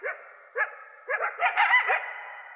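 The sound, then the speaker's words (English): A coyote family yips and howls in short, rising, high-pitched cries that start singly and then overlap into a brief, frantic chorus of several voices. No one speaks. “there's usually only two or three that are doing all the noises”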